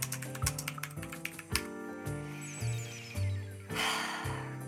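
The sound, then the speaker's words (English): Quick bursts of computer keyboard typing, a rapid clatter of keystrokes, pausing briefly before a second flurry, with no voices. “I'm typing it in now”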